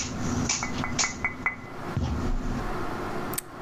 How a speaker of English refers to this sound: Do I see anything? Yes, you see a rather large raven tapping on the window.